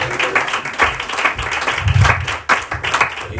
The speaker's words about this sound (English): Praise the Lord. Y'all come on, give him another hand clap of praise. Thank God for the word.